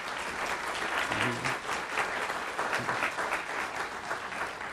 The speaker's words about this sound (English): So go ahead and give him a round of applause.